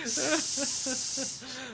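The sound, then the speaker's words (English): A person imitates a snake with one long, steady hiss lasting nearly two seconds, loud, with a faint voiced hum running beneath it, voicing the name of a film. “That is the name of the film.”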